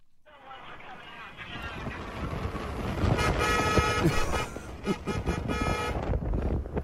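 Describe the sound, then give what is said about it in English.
Several car horns honk over and over, overlapping in loud, sustained blasts above a dense rumble of road traffic, with muffled voices mixed into the din, from a convoy of Trump supporters in Texas following the Biden bus tour. “I love the horns.”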